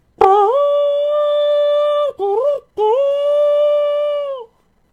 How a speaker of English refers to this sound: Then suddenly, with a deep-throated call, a great horn blew, and the blasts of it smote the hills and echoed in the hollows, rising in a mighty shout above the roaring of the falls.